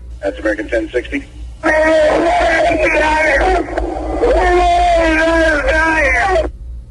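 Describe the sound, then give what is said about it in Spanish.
A man's anguished, sustained howling scream, more a howl of pain than a shout, loud and strained, following a few short spoken syllables, over a steady low engine-like hum of an aircraft cockpit recording. “Terrible, ese más que grito, aullido de dolor, diría yo.”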